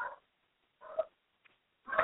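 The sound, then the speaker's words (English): A small dog named Duncan yaps three times in the background of a live show, short sharp barks spaced roughly a second apart, clear, with quiet gaps between them and no one talking. “Well, hi, we've come back here, and you're going to hear my little Duncan barking in the background, but that's what happens sometimes when you're live.”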